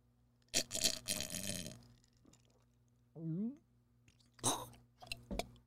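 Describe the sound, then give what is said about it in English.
A wet slurping sip of iced coffee, followed by a short satisfied hum and a few soft, moist mouth clicks and swallowing sounds. “I'm going to take a sip of my iced coffee.”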